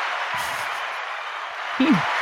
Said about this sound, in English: He knows he got it. A little applause for you there.